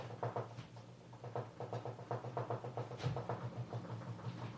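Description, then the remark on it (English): A refrigerator rattles and knocks in a rapid, uneven series of dull taps over a steady low mechanical hum, with no voices present. “There's some shaking, like almost like, is an earthquake happening here? It might just be an exploding refrigerator.”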